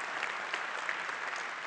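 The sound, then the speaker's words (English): An audience at a church worship service applauds for the Lord, a steady wash of many hands clapping at once with no gaps, sustained at moderate loudness from start to finish with no voices standing out. “Can we give the Lord a round of applause?”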